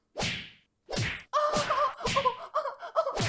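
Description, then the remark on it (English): A rapid flurry of punches lands, each a sharp swishing whack, at first spaced apart and then coming faster, with a bright ringing tone underneath the later hits. “Oh, your punches have no effect on me. He's laughing off my punches.”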